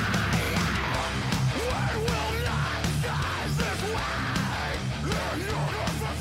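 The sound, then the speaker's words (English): A loud metalcore song, used as a WWE wrestling entrance theme, with harsh screamed vocals over dense, distorted guitars and pounding drums, forming a thick wall of sound that stays at full intensity throughout. “with the WWE theme song used for years by CM Punk”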